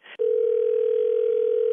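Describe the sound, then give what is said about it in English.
A steady, unbroken telephone dial tone hums at a single low-mid pitch for over a second as a phone is being dialed, loud and alone, after a brief burst of noise at the start. “I'm going to dial the phone for you, okay?”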